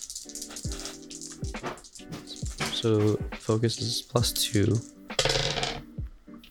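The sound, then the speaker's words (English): Dice clatter and rattle across a hard surface in a few quick bursts of small clicks, fairly loud, while a person speaks briefly over the sound as a player rolls for focus in a game, scoring 7. “I rolled 7 on the dice, plus 2, that's a 9.”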